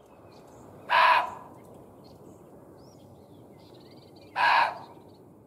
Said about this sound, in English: It's been hypothesized that the animal noises heard by Halt and his men were muntjac deer. They can bark repeatedly and loudly, and can be known to scream when frightened. Take a listen.